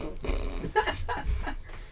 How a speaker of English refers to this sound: Is that the dog? There's a dog that has just joined the podcast. Welcome to the podcast. There are two dogs that have joined the podcast.